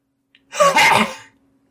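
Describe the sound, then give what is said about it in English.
A single harsh, dry cough burst voiced by a person, imitating a throaty racking cough; loud, with a brief noisy rasp lasting under a second, alone without talk. “It's like a big throaty, yucky, but dry cough.”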